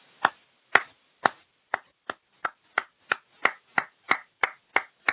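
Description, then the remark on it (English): A single person's slow clap: about fourteen sharp, crisp claps, evenly spaced and gradually quickening, with no voices. “That, ladies and gentlemen, deserves a slow fucking clap.”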